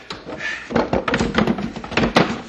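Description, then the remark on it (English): Wooden creaks and scraping thunks as a crate is forced open by two people prying from opposite sides, with a series of sharp knocks and cracks of splintering boards, no talking. “Now, you pry on that side of the box, and I'll pry on this side.”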